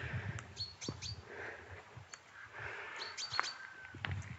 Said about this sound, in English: So there's quite a few chaffinches, that cascading note. And that pink of the chaffinch. There we go, that's the male chaffinch's call, song.